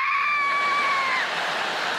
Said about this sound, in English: Would you like some water? Ah! No, thanks. I always scream at the table. Ah! It's too hot.